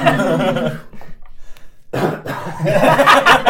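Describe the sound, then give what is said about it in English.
A loud coughing fit: a run of harsh, throaty coughs, a brief pause, then another rough burst of hacking that fills the rest of the moment. “The cough fountain.”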